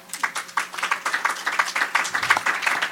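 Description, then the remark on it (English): Light, polite clapping from a small group, a steady patter of overlapping hand claps lasting the whole moment at moderate volume, with no voices over it. “There's the golf crowd.”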